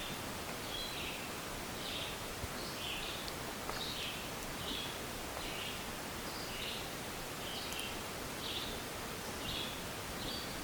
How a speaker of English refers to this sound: Listening to the beautiful songs of the birds.